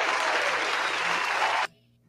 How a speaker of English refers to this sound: Yes, we needed applause on that. Yes, appreciate that.